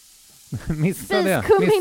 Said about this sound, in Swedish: Kristoffer la precis i spiskummin i stekpannan.